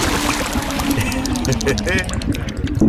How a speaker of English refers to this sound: Grapple hook ready. Let's sink it into the water.